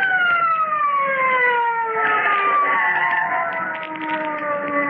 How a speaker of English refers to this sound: Listen. Police car. Sounded like it.